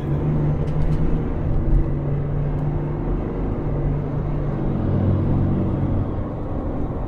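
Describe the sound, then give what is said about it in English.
A steady rumble of a car's engine and tires on the road as it goes past a logging truck that has pulled off to let it by, holding a constant level throughout, with no voices and no distinct pass-by swell. “Guy let me go by. Nice logging truck driver.”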